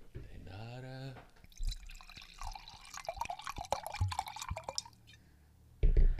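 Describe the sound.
A brief voice, then wine pours steadily from a twist-off bottle into a glass for several seconds, a bubbling gurgle with small splashes and a rising tone, ending with a soft knock.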